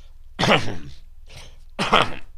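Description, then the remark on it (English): Two loud, rasping coughs, separated by a brief, fainter throaty burst, with no talking. “We had played a place called, excuse me, to cough.”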